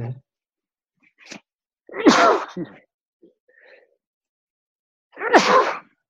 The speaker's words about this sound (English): Excuse me, I have to sneeze.